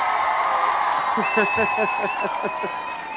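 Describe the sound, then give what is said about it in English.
A canned applause sound effect played on a show to welcome guest Chadwick Moore: a steady wash of crowd clapping with cheering voices mixed in, holding at an even level for about three seconds and thinning slightly at the end. “So let me give you our traditional, where is it here, our a little round of applause.”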